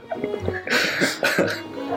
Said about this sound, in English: Literally sipping tea. You nearly choked on the tea as you started the sentence, too.